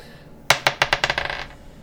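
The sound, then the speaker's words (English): Dice rolled for a perception check, coming up 19, clatter across a hard surface: a sharp first hit, then a quickening run of bright, rattling bounces that grow softer until they settle after about a second. No voices. “Roll perception.”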